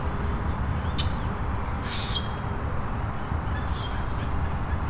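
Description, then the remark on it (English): A few short, harsh, squeaky common grackle calls, one louder raspy burst among them, over a steady low rumbling background noise, with no talking. “Grackle, common grackle.”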